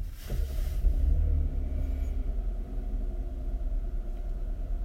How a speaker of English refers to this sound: Yes, 3.8 liter gas direct injected engine is not as loud as some of the other cars we've experienced.